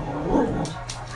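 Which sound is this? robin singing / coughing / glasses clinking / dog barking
dog barking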